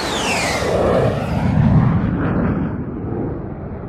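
A loud, steady jet roar of an airplane taking off, with deep rumbling, while a high whine sweeps downward in pitch across several seconds, then the noise eases slightly toward the end. No one speaks.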